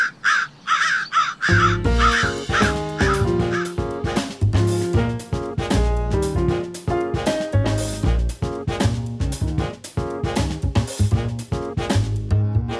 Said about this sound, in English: Well, crows are craftier than we might have imagined.